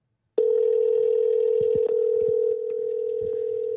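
A steady telephone dial tone of an outgoing call placed from a studio starts abruptly and holds at one even pitch for several seconds, loud and unbroken, with faint low clicks and bumps underneath.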